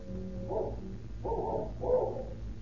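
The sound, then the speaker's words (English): A cur dog at the Adkins Ranch barks fiercely three times in fairly quick succession, each bark a short, rough burst over a low, steady background hum. “But the only greeting they receive is the fierce barking of a cur dog, which Gutsweiler and King had seen loping down the road after the two retreating men.”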